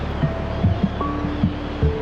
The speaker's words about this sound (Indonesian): Kamu sedang berada di tepi pantai Marina. Ada banyak sekali pemandangan selain pantai yang indah, dengan deburan ombak yang mengayun-ayunkan bubblemu.